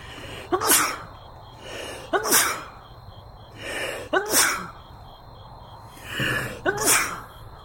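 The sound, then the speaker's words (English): Four loud sneezes in a row, each starting with a sharp intake of breath before an explosive burst, spaced about every one and a half seconds, with no talking. “Like, I've never met another person who sneezes like hop like me.”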